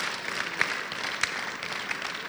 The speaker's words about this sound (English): Oh, yes. Now, if you want to clap, clap.